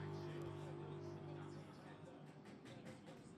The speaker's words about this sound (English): Car is up on the air tracks. You can probably hear in the background the rattle guns going. That's the front tyres off. And the front tyres on.